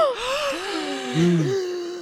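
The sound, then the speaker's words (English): Several people gasp in shock at once as a gun is pulled from a bag, their overlapping voiced gasps rising and falling together in a fairly loud burst lasting about two seconds. “pulls a gun from the bag, gasps all around.”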